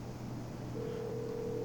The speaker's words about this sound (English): We're gonna get him up. We got the phone ringing.